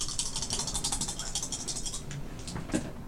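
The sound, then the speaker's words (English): Dice rattle and clatter in a steady run of quick, bright clicks for about three seconds, ending with a slightly louder knock near the end, as dice are rolled for a game, showing two, two and one for five total. No one speaks. “He's getting dice.”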